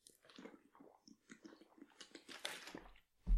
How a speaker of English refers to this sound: You just sat there and watched me have a drink of water.